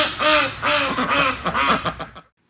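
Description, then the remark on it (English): A burst of ducks quacking, several loud, nasal quacks in quick succession, clear with no talking, stopping abruptly after about two seconds. “At the end of the day, just don't get ducks. No, get ducks.”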